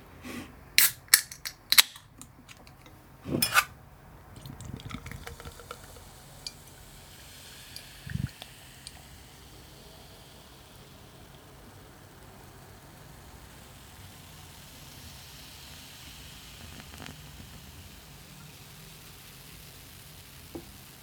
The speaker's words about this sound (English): So, without further ado, let's open a Czech Pilsner and have a pour.